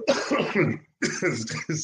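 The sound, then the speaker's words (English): A man coughs in two harsh, throaty bursts separated by a brief pause, loud and raspy, with no talking over it. “Upset … so much, he's coughing now.”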